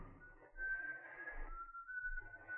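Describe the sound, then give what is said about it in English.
A thin, eerie whistled tune coming from a window at night after a storm has ceased: one wavering high note that holds steadily and then glides slightly lower, heard faintly and alone over a soft low rumble. “That's a familiar sound, isn't it, Paul? It's coming from that window.”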